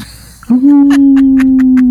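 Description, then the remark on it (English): A voice does a wolf-howl imitation: one loud, steady, sustained note held for about a second and a half after a quick rise, with faint rhythmic tapping underneath. “They're like, some people just do like a wolf howl.”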